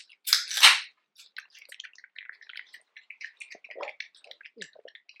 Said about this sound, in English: Oh, damn, we're really eating bugs, my nigga. Yep. One, two, three. That was different. All right. It had different crunch.